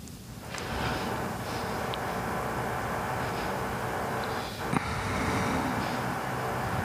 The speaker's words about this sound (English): This is a lot of drilling. Like, it's usually not this much. You can never predict it. Yeah. Sometimes it goes stretches with nothing, and then boom, it's like that.